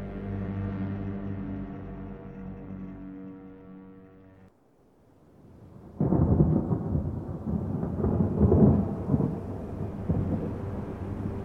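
A sustained tonal drone fades to near silence, then a steady wash of rain rushes in with deep, rolling thunder rumbling loudly underneath, continuous to the end.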